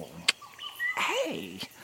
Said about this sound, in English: Oh, yeah. The whistling and trilling of the parrots is especially beautiful today.